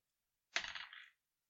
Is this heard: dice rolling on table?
yes